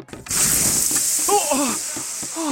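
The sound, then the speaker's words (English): Water hisses as it douses flames on people scorched by fire: a loud, steady, sizzling hiss starts abruptly after a brief moment and runs throughout, with a voice briefly speaking underneath. “Kind water quickly put them out.”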